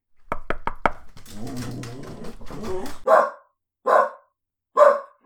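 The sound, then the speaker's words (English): A series of quick knocks and a muddled, busy stretch, then a dog named Fluffy barks three times, sharp, with short pauses between each bark. “The dog bite? Sometimes.”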